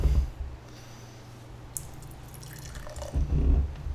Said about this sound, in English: I'll be more respectful of our listeners and not slow pour this one. So, yeah, much like the Pivo earlier, this is considered a Bohemian Pilsner.